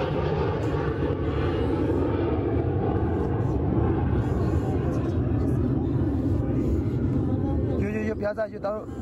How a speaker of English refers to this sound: When they think it's safe, they run. But the plane circles back.